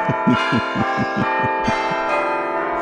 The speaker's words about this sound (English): They're arguing about church bells.